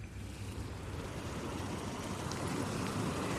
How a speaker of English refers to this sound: The predominant sound is the sea, quite definitely the sea.